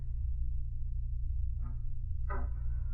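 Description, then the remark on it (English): A squeaky bedroom door is opened by its knob and creaks in two short, grinding bursts, the second louder and longer, over a steady low background hum with no one speaking. “Oh, it would be a squeaky door.”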